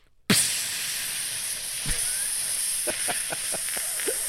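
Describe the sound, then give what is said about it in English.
A voice imitates a steady, high-pitched hiss of air leaking from a tire at a gas station air and water machine. It starts abruptly, holds at an even loudness for about four seconds, and a few faint clicks and pops cut through it. “and that's where the air's coming from. I'm like, and then all of a sudden I'm thinking, someone slashed my tire last night.”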